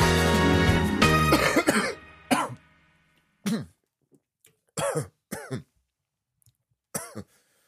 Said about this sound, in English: Sorry, I'm just doing a bit more performative coughing, just reminding you that you should take sympathy on me.